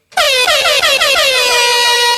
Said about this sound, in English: Air horn, please.